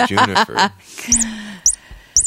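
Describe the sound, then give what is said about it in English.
A chirping bird-shaped cat toy named Juniper lets out three short, high, squeaky chirps at a steady pace, following a brief burst of someone talking at the start. “That's a cat toy.”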